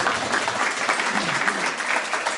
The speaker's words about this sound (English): Thanks. Have a big round of applause.